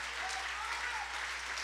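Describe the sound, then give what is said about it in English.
A crowd claps their hands to the Lord in a steady, dense wash of many hands clapping at once, sustained and fairly even in loudness throughout, with no pauses and no individual claps standing out. “Oh, somebody clap your hands to the Lord right now.”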